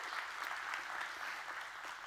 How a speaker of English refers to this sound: So, church family, let's give it up for those joining us online, our first-time guests. Come on, give them a great big hand clap.